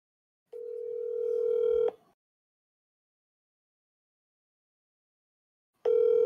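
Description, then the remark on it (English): An outgoing phone call ringing tone: a steady electronic ring lasts about a second and a half, then silence, then the next ring begins. Clear, with no voices. “He's not gonna answer.”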